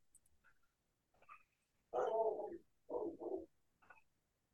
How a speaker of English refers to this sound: Every time Luna barks, the dog, I have to look at her and be like, other people can exist. Please stop barking at cars.